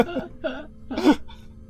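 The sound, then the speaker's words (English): A person imitates a burp with their voice: a few short, throaty croaks, with the last one loudest and deepest, then a faint little puff of breath. “A little bit of a burp.”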